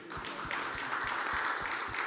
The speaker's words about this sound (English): Round of applause for Dan.